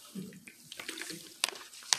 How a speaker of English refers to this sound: I got to have a swallow of water.